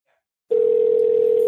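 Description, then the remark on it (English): After a brief silence, the steady electronic ringback tone of an outgoing phone call sounds through the line, one continuous loud hum holding a single pitch with no voices over it, as the call goes unanswered. “Mystery caller is not picking up.”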